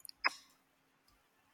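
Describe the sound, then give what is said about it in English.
A couple of light clicks, then one sharp clack that rings briefly and fades, and a faint tap near the end, as dice are rolled onto a hard surface, fairly quiet. “Roll that dice. Roll them bones. Roll the dice.”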